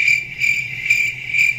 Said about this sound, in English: Crickets in like the forest.